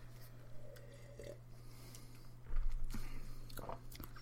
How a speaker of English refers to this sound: So this is the ASMR section of the podcast where we slap our tongues around. The annoying part of it.